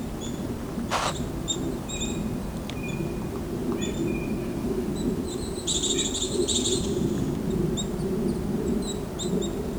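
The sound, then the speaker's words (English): Repeated nasal, buzzy white-breasted nuthatch calls mix with a black-capped chickadee's chattering chickadee-dee-dee notes in a mixed feeding flock over a steady low outdoor rumble, the short calls scattered throughout and a busier burst of calling midway. “Nasal call, that's the white-breast nuthatch. And that's the black-capped chickadee with the chickadee-dee-dee call.”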